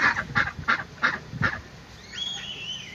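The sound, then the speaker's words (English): About eight white ducks that have run up on a group of people quack: a quick, evenly spaced run of five loud, harsh quacks, followed by a longer, wavering call. No one speaks. “Bro, like 8 ducks. just ran up on us.”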